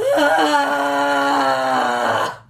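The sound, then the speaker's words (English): A voice imitates a dying whale with one loud, sustained moan lasting about two seconds. It slides down in pitch at the start, then holds a low, mournful tone before cutting off. “Dying whale noises.”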